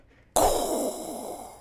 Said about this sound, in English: Oh, but breathing like this. Talk. Yeah, that's not really intrusive. Like, it's not that loud.